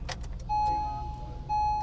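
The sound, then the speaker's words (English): A few quick metallic clicks of a key turning in the ignition of a fuel cell car, followed by two steady electronic chime tones from the dashboard, fairly quiet, with no talking. “Okay, I'm putting the key in the car.”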